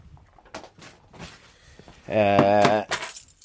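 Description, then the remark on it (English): Keys jangle in short metallic bursts, mixed with light talking, and a loud sustained tonal voice-like sound cuts in briefly partway through. “Keys.”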